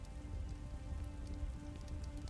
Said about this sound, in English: The rain is heavier now.